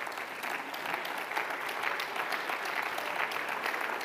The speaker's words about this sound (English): I wonder, can you stand to your feet? I wonder, can you put your hands together? Come on, somebody, clap your hands and lift up your voice right now.